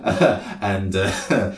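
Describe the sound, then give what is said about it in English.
A woman gives a few voiced coughs in quick succession, throaty and somewhat rough, filling the short moment with no speech around them. “She coughs”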